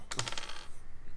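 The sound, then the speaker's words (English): A quick clatter of many dice tumbling across a hard tabletop, a burst of sharp rattling clicks that settles within half a second, fairly quiet, with no voices. “A lot of dice, baby.”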